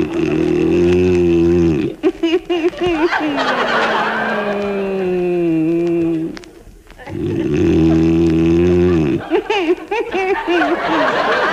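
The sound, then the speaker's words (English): A man snores loudly: long, rumbling, drawn-out snorts that rise and fall in a slow repeating rhythm, with a brief pause between breaths. “It's the only way I can stop you from snoring.”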